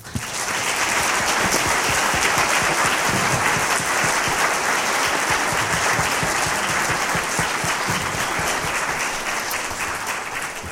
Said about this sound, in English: A round of applause for them and for our student crew who assisted them.